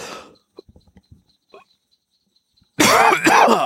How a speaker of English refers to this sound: Sorry, I had to turn down my mic and cough.